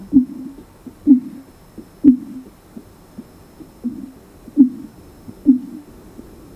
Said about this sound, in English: And what I've got for you, the clip, which is, I think, possibly the clip of the year, is the recreation of a fin whale call as they were tracking these fin whales along fibre optic cables.